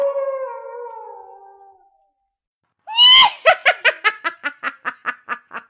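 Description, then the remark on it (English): A long, sliding werewolf howl, the legendary half-man, half-wolf, with rich harmonics slowly fades out. After a brief silence, a loud burst breaks into a rapid, rhythmic cackling laugh that gradually weakens. “the harrowing story of the legendary half-man, half-wolf.”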